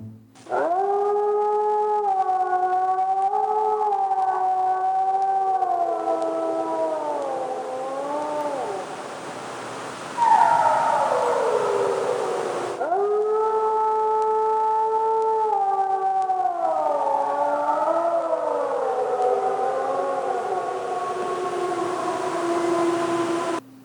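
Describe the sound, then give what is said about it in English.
Two long, loud wolf warning howls, each a sustained harmonic tone that wavers and then slides downward, clear with no talking, the second following right after the first. “So let's go ahead and listen to the warning howl, the don't mess with me howl.”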